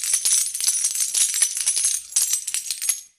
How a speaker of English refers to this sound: What's that sound? It's the sound of treasure pouring into a treasure chest. That is a lot of doubloons and pieces of eight.